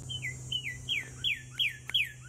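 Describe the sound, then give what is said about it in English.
A woodpecker call, played from a man's phone to call a woodpecker back to him from a tree, repeats six times in quick, evenly spaced succession, each note a sharp downward-sliding squeal, clear, over a low steady hum with no talking. “He gets out his phone, okay? And he is going to try and get the woodpecker to come back to him and call it back.”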